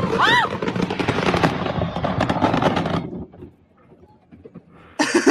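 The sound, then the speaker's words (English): Fireworks going off: a whistling streak and a dense barrage of crackling bangs for a few seconds, then scattered distant pops before another loud burst erupts at the end. “Yeah, I'm just saying, though, their 4th of July barbecues must be dope if they hoard that much fireworks.”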